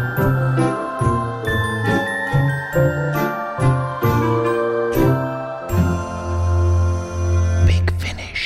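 A bright, tinkling instrumental theme tune plays alone at full volume, with steady rhythmic chimes over a bass line before it settles into a long, sustained chord and a closing swell.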